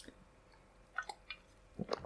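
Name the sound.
sipping coffee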